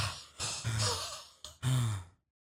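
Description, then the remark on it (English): A voice imitates heavy breathing: a few loud, breathy huffs and sighs in quick succession, with no talking, ending abruptly in silence. “I feel like I'm breathing heavy. I just heard myself breathe.”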